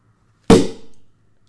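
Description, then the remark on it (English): A champagne cork pops out of a bottle of Californian sparkling wine from Napa, opened to make a French 75 cocktail, with a single sharp, loud bang, followed by a brief hiss of escaping gas that quickly fades to quiet. “So let's see if I can do this without blowing out an eye.”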